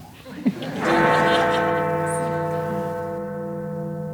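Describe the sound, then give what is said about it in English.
A single deep strike of the Big Ben bell, loud and resonant, its rich overtones humming and slowly fading over several seconds, preceded by a brief faint murmur. “So if the sound is working, I think we have some big Ben bells.”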